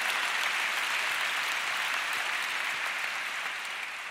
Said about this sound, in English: If you're feeling me already, give God a hand clap of praise in the house.